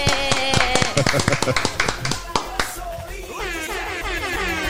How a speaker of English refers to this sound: And special guest, the man, the myth, the legend. Round of applause. Let's go.